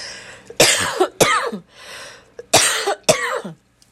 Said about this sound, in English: I have a tendency to cough, so you're going to hear that every once in a while. I apologize.